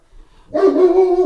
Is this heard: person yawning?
no